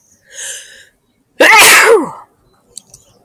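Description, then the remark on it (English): A single loud sneeze bursts out after a short intake of breath, followed by a brief faint sniffle, with no talking around it. “My problem, and I'm going to sneeze.”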